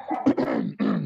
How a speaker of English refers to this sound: A dog in the background doing the same thing.